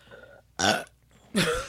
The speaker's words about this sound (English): I have the burps.